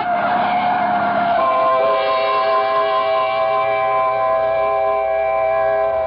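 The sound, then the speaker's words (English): A truck bearing down on a pedestrian crossing the street screeches loudly, a rough rush of noise giving way to a sustained, steady shriek of brakes or tires that holds for several seconds without fading. “look out! The truck! Look out for the truck”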